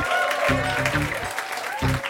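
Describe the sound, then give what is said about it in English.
An audience claps steadily for a panel, a dense, continuous patter of applause, with faint muffled voice-like bursts rising briefly beneath it. “Give a round of applause for the panel tonight.”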